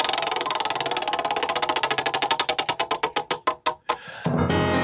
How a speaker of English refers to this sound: But I think it's about time we spin some wheel. What do you think? Ooh. Ooh. All right, let's get that spinning. Do it.